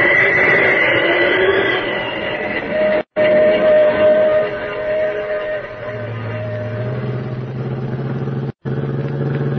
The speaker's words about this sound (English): I wonder whether that's the right train. I'll just drop down a little closer and take a look. Uh-huh. Pacific Flyer, all right. The only train they could be on.